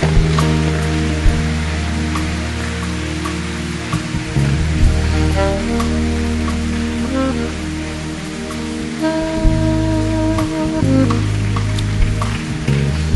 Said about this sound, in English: Let's give the Lord a big round of applause for all these people. Give them a really big round of applause.